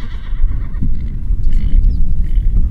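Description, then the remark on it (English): A wild horse of the Anakie herd in Skull Valley, Utah, whinnies outdoors over a steady low rumble of wind, its high, wavering neigh rising and falling for a couple of seconds, with a faint hoof clop beneath. “I went to see the Anakie horses with Becky Winstead”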